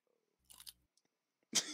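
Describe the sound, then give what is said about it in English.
Crunchy chewing of food: a short crackly bite with a low murmur under it, a pause with faint clicks, then a louder, sharper crunch at the end. “Dude, this show is fucking delicious. Fucking crunchy guy here just...”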